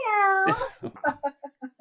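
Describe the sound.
A person gives a loud, drawn-out imitation of a cat's meow that slides downward in pitch, followed by a quick run of short, evenly spaced vocal bursts.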